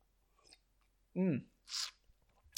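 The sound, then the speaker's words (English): Someone takes a sip of a drink: a short voiced gulp followed by a breathy exhale, two brief mouth sounds in an otherwise quiet moment. “I'm having a little sip there, sorry.”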